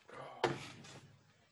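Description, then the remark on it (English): A door closes with a single fairly loud wooden thud, preceded by soft shuffling and followed by a brief fading rustle. “Hold on 2 seconds, mate. My door's knocking.”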